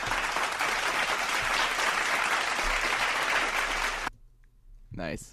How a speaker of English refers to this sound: It's the Philadelphia Phillies. Enter applause, I would say.